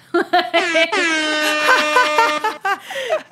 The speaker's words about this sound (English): is there some type of official sound we can make? I don't, like an air horn, maybe?